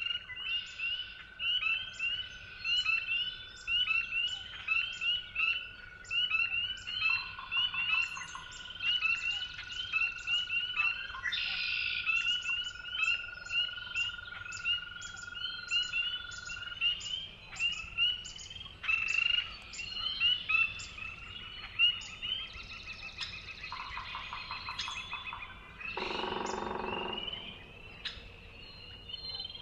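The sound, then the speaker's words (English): A dense dawn chorus at Willow Pond in Finger Lakes National Forest, New York: spring peepers' high, repeated peeping forms a continuous shrill layer, with songs and calls of red-winged blackbirds, northern flickers and other species weaving through over a steady hum, no voices. “It's a dawn chorus with spring peepers, red-winged blackbirds, northern flickers, and other species.”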